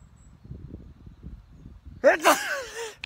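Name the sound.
sneeze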